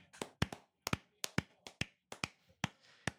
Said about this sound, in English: I think it's only fitting if we give one more round of applause to the Brothers in Kayfabe Hall of Fame class of 2022.